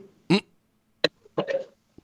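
A man coughs several times in quick, uneven bursts, the last one drawn out and raspy, then a faint short cough trails off. Close and fairly loud, with no talking.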